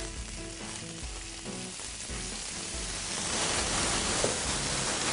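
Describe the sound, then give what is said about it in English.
Steady, loud sizzling and crackling of food, including beets, charring in a hot cast iron pan, the hiss thickening and growing louder partway through, with faint low clinks underneath. “All right, so we just want to just get this to the point to where you got a little char on it.”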